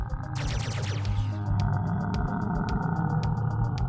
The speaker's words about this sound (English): They're just firing away at the Vesconoth, and the Vesconoth roars.